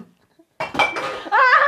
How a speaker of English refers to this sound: I was just stretching and I kicked over a glass bottle